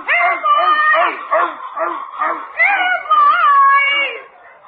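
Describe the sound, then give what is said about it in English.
A dog in The Great Gildersleeve barks and yips excitedly while chasing the neighbor's chickens, in a rapid, rhythmic string of loud calls, with a few longer whining yelps mixed in. “that dog has to go”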